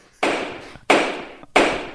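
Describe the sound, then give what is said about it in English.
A gavel bangs three times in a steady rhythm, each loud, sharp wooden strike followed by a short ringing decay, with no voices in between. “My hammer got stuck.”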